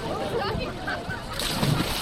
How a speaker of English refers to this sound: It's a hot, sunny June morning on the Boston Esplanade. 150 swimmers in numbered yellow and orange caps tread water in the Charles River, just in front of the hatch shell where … the 4th of July fireworks every year.